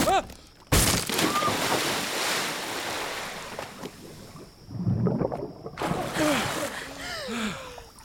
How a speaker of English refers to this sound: It won't let go. The boat is breaking up.